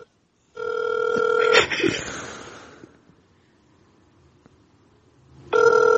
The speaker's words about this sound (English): Dude, no way this phone is attached to a McDonald's. It's three rings. That's not good. It's probably busy there.